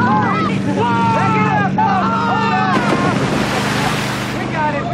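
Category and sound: vehicle, boat moving through water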